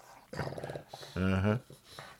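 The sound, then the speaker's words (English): A dog makes short, low grumbling growls: a brief rumble, a pause, then a louder, sustained growl before it fades out. “Here comes the dog.”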